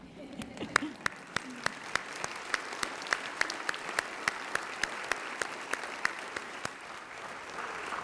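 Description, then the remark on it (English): A church audience applauds in thanks to the people who supported families, steadily for several seconds, a dense wash of many hands clapping with sharper individual claps popping out above the crowd. “We'd like an opportunity to recognize all of the people who have supported family with our deep thanks and applause.”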